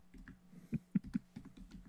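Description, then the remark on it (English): Someone types on a computer keyboard in an uneven burst of clicky keystrokes, a few taps landing harder than the rest, fairly quiet with no talking. “I'm getting better at typing with like one in 5/8 hands.”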